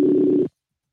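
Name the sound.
phone call ringback tone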